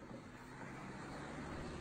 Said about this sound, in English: Hey, hold on. Two cars coming. You got two cars coming two different ways.